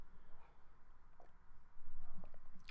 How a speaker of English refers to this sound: Hold on, sipping coffee.